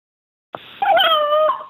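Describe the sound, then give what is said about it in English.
A dog named Frank lets out one unusual yowling bark: a sharp yip that stretches into a wavering, howl-like cry lasting about a second, with no other sounds around it. “I can now show you, as I promised, or not demonstrate for you, as I promised long ago, what their bark sounds like.”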